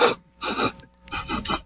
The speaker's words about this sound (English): I sniff the air. Do I smell burning flesh?